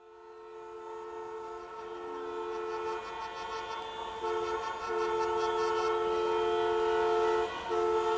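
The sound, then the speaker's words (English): Car horns blare in street traffic in Ecuador, long sustained honks overlapping almost without pause for several seconds, loud, with a few brief dips between blasts and no voices. “Here in Ecuador, and when there's traffic, people are frustrated, they start honking their horns and beeping and beep beep, and lots of noise in the street.”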